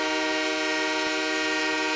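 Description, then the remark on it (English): A loud, steady blare of a hockey goal horn signalling a goal scored, one long unbroken honk with a rich, buzzing tone that fills the whole moment, with no voices over it. “Yeah, yeah, we hear you. Honk, honk. Goal scored.”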